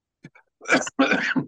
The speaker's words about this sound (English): Just when I go to speak, I have to cough. It's one of those kind of things. God is afflicting me.